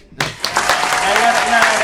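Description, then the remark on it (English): A sudden burst of loud applause sound effect, added after a rap verse: dense clapping from many hands that kicks in after a brief near-silence and holds steady for the rest of the moment. “Can you add the clap noise to that?”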